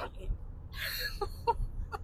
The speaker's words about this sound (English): I sorry, I had to cough.